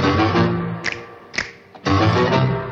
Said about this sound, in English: known for its harpsichord-heavy sound and, as we'll see, percussion finger snaps.